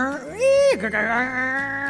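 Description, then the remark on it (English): A voice imitates a fax machine transmitting: a loud, nasal screech that rises, holds, drops abruptly, then settles into a steady buzzing drone lasting about two seconds, unaccompanied by speech. “JF Cat had never heard a fax machine before. It sounded like the interwhat was trying to cough up a rusty harmonica.”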